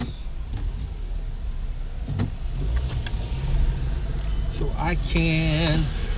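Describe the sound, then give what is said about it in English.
A car pulls out into traffic: a steady low engine and road rumble, with the engine note rising and straining toward the end as it accelerates. “that gap right there, guys, wasn't a strange thought. It was just me pulling out in front of traffic.”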